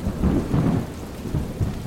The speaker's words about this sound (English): When the wind howled and the storm's rain thundered off the aluminum roof, however, I was glad to have found such a secure fortress against the gale.